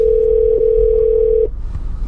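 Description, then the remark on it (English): A single steady electronic ringing tone from a phone line, loud, holds for about a second and a half, then cuts off, leaving only low background rumble; the call goes unanswered. “He ain't answer the phone right there.”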